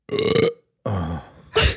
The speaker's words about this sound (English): If you're at home right now, I want you to try and burp moan. Do it as fast as him.